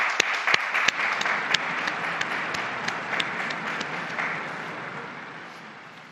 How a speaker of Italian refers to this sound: E un applauso a Benedetto XVI.